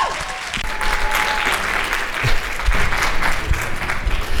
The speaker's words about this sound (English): Without further delay, put your hands together, start clapping loudly for my brand new friends, Chad and Cheese!